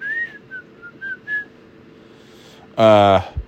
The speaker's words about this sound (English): Whistling, you know, like I do. I never listen to music or any kind of talk radio. I just whistle. Whistle in silence when I'm driving. Whistle That's it. Whistle in silence.